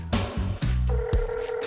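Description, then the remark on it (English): A rapid series of electronic keypad tones as a burner phone is dialed to place a call, several short beeps in quick succession followed by a steadier held tone, fairly loud with no talking. “I fire up one of the fresh burner phones and call Harry Longbeck.”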